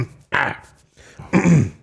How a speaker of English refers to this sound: Let me try this one. Clear my throat.